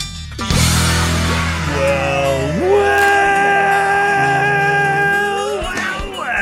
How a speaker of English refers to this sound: The sound of a party just about to start.